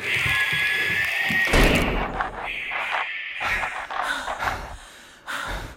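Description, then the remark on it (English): A heavy door slams shut with a single loud, booming thud partway through, cutting off a shrill, sustained whine, followed by scuffling, rustling noise and faint breathing. “Door seems to hold.”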